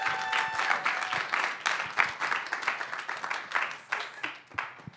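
A crowd applauds steadily for about five seconds as a speaker is called up to speak, the dense clapping holding a fairly even level with small swells, and a faint high whistle or cheer rising briefly at the start.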